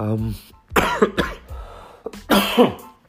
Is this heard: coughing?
yes